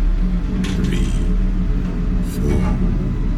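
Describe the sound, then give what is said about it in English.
A steady, low mechanical whir hums throughout at an even level, with a couple of faint creaking, clicking sounds from the machinery, like an elevator running between floors. “The only sound in the lift was the gentle whir of the mechanism.”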